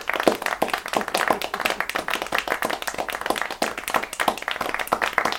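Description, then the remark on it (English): A round of applause from a small group, hands clapping quickly and irregularly in a steady burst that carries on for several seconds without any talking. “Round of applause for me.”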